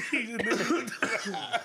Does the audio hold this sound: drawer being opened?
no